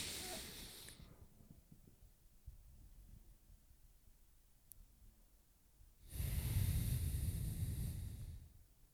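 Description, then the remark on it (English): Deep, slow belly breathing: a long airy exhale fades out, a quiet pause follows, then a full, loud inhale rushes in near the end. No talking. “So, breathing into your belly.”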